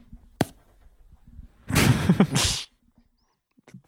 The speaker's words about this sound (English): I actually don't care that you slapped my boot